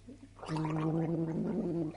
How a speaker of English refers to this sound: She's just spat it into a glass there. Right, so there you go. So she's basically gargled some mouthwash there